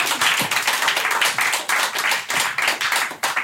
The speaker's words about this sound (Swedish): då tycker jag vi ger Anders en enorm applåd